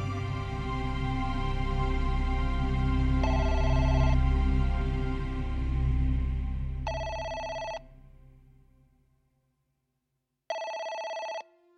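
A telephone rings in short, bright bursts, three times, spaced a few seconds apart. The first ring is faint under a low rumbling background, and the last rings out clearly in near silence.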